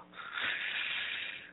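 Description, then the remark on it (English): A single long, deep breath drawn in during a breathing exercise, a soft airy hiss that swells quickly and holds steady for over a second before easing off. No talking. “One more time. Inhale. Now exhale. Inhale.”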